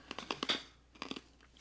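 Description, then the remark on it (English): Crisp crunching of a Werther's Original hard caramel candy being bitten and chewed, two quick bursts of sharp cracks separated by a brief pause, with no talking. “You know, I got my candy tonight, so I'm crunching.”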